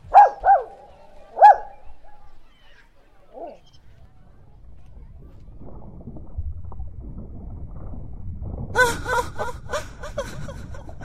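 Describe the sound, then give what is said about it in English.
A dog on a shore barks sharply three times, then a low rumbling, splashing noise builds before a quick flurry of yelping barks near the end. “Dogs are not to be trusted with mermaids.”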